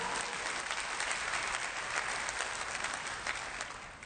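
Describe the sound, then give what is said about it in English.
An audience claps steadily for about four seconds, a dense, even wash of applause from many hands that fades slightly at the end, with no voices standing out. “You wanted to clap again, didn't you? Go ahead.”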